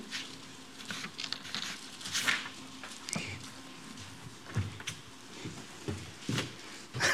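Crisp paper rustling and crinkling around someone's feet as a bit of paper is cleared away, in irregular bursts, with scattered sharp rustles and soft shuffling over a low steady hum, moderately loud throughout with no speech.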